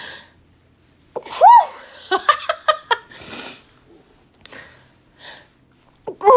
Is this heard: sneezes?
yes